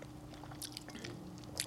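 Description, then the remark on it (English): Several quiet sips of Duckhorn Cabernet wine from Riedel glasses, with soft wet slurps and small mouth noises in short bursts over a low background hum, and no one talking. “Let's take a sip. Take a little sippy.”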